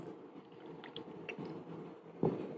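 Someone takes a quiet sip of a drink, with soft wet mouth clicks and a small gulp near the end, against a faint background hiss.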